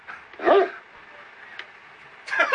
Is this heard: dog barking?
yes